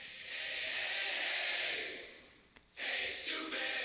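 A loud, drawn-out nasal sniff that slowly trails off, then a brief pause and another forceful snort through the nose, close up with no talking.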